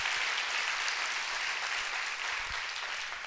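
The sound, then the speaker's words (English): A crowd claps steadily for a few seconds, a dense, even wash of many hands with no pauses and no voices over it. “Clap your hands and rejoice over that.”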